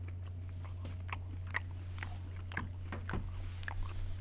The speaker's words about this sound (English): I'm just going to chew my bagel. It's funny because as the intro was rolling, and I'm sitting here taking a bite from this crunchy-ass bagel,